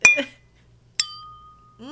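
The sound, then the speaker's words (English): Champagne glasses clink in a toast: two bright clinks ring out about a second apart, each leaving a sustained high ringing tone that slowly fades, followed by a voice starting to talk at the end. “I'm going to cheers you one more time to 20.”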